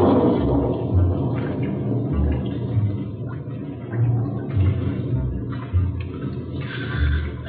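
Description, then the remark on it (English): A steady wash of rain starting to fall fills the scene, dense and continuous, with low rumbling thuds swelling underneath every second or so. No one speaks. “Rain's darting in.”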